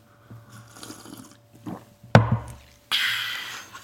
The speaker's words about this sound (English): taking a big slurp of his decaffeinated tea